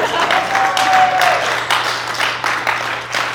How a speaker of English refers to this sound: Would you now stand and show your support and recognition of the part you play in her life? Yes, that's clapping time.